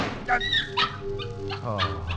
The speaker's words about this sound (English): Oh, a dog. Only a dog. Yes, it was only a dog.